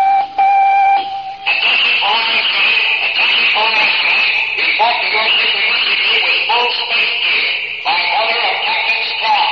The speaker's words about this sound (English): Cadet life is quiet and routine on the Space Academy campus. Suddenly, the dormitory intercom crackles into life.